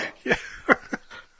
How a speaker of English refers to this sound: Oh, the dog's excited too.